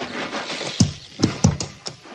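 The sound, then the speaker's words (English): A horse shifts about, its hooves landing in about five uneven clip-clopping thuds over a low, steady background rumble, with no voices. “But like I told the lieutenant, Captain, that horse is mean this morning.”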